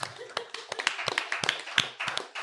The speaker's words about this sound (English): All right, because I'm tired, we're going to move on to the magic silver box. Ooh, everyone applaud. Yes.